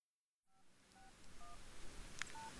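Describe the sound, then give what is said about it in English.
A few touch-tone beeps from a phone keypad as Stanford students dial elderly Jewish voters for the Barack Obama campaign, spaced roughly half a second apart, each a short dual-pitched chirp over a low, steady background rumble, with no one speaking. “Charlie Mintz documented a group of Jewish students at Stanford as they picked up their phones, called their bubbies, and often got more than they bargained for.”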